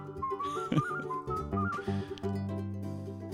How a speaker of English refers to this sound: Oh man, this is fun. Is this distracting? I don't know. Check out that whistling, huh?